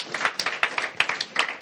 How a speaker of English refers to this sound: Come on, give God a hand clap of praise.